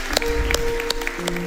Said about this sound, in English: Awesome, church, can we just clap for these people that made that decision today? That is so awesome.